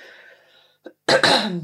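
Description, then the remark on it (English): A loud coughing fit as a person tries to clear their throat: a short catch of breath, then two sharp explosive bursts that trail off into a rough, voiced rasp. No one speaks. “But I cough and everyone thinks I've got bloody COVID.”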